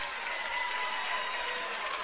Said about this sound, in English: How about that? And even the Red Hill fans are applauding that shot.